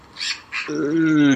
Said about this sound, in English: When it gets dark, do the birds talk less?